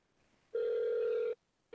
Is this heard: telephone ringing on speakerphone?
yes